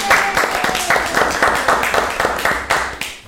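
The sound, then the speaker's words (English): A crowd of people applauding, dense and steady clapping that holds at a fairly loud level for a few seconds, with faint voices mixed into the noise. “A round of applause for the Wiggly Florist.”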